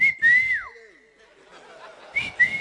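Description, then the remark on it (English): A person whistles to get someone's attention about her ringing phone: sharp, steady high notes, one with a quick downward slide, then a quieter pause and two more short whistle bursts at the end, clear with no talking. “So I'll whistle.”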